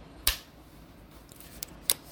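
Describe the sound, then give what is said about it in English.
A computer keyboard is shifted across a desk: a sharp clack, then a couple of lighter knocks and a final clatter, fairly quiet, with no voices. “So what I need to do is I need to move Mr. Keyboard here.”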